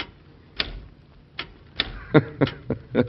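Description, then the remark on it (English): Sharp mechanical clacks of an early typewriter being typed on in the White House, about a dozen irregular strikes that quicken toward the end, with a faint background hum. “Think of it. A typewriter.”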